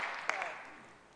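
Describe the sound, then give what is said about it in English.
A brief burst of audience applause, a dense patter of many hands with one sharper clap near the start, quiet overall and tapering off within about a second. “Yeah, give me a hand clap.”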